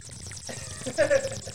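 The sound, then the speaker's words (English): A voice imitates the gurgling bubble of a bong hit: a steady, wet, burbling rush that swells louder near the end with a few squeaky, whistling tones, alone. “He's hitting a bong. But that's actually a pretty good bong.”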